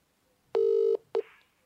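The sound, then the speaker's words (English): Two electronic tones from a phone near a microphone sound loud: a steady beep lasting under half a second, then a much shorter blip, with no talking around them. “That phone near the microphone.”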